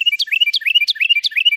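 A songbird chirps in a quick, steady series of bright, rising-and-falling notes, repeating about four times in under two seconds, close and clear with no other sounds.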